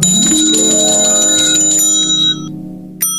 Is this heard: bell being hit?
yes